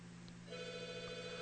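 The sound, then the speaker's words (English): A telephone ringer starts up partway through, a steady electronic tone layered with sustained harmonics, continuous over a low background hum, with no voices. “You know, I'm not going to be able to take that phone call right now”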